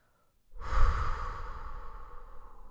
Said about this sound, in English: And yes, take an inhale with me.